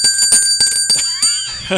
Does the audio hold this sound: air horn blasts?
no